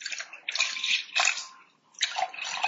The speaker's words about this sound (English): So what did you just pour for me? I just poured you a really unique red wine. We call this Carbonic Grenache.